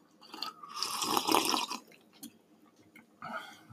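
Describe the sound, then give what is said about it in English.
A wet slurp as someone sips Vanilla Nut Cream coffee from a cup, a long drawn-in sip followed by a quiet pause and a second, shorter sip. No talking. “I'm gonna sip on that.”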